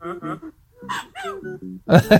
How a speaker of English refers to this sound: The tissue box sneezes a tissue into the waste paper, into the trash can.